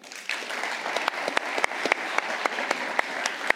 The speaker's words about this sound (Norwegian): Hjertelig velkommen til Støren Kulturhus og Jegerpodden Live. Og en enda en applaus for kveldens kulturelle innslag.